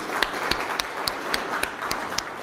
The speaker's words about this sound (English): Well, let's give them a round of applause, shall we?